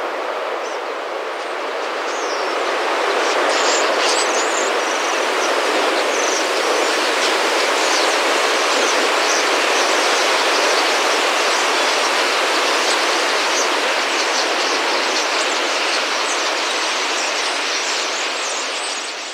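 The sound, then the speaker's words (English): A dense, continuous roar of a huge starling murmuration, the flock moving in synchrony, countless wingbeats and chattering calls merging into a steady rushing wash that holds loud for the whole stretch, with no voices; from Jan van Eyken's 2015 film The Art of Flying. “The film depicts a massive flock of birds, all moving in synchrony, their movements creating sublimely beautiful patterns and sounds.”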